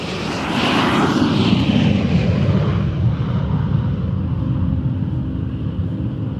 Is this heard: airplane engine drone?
yes